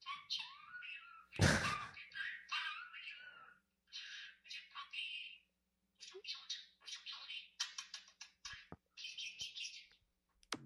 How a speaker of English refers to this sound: Was that the bird saying you're so cute? I'm trying to tell. Let's see. I think that might have been the bird.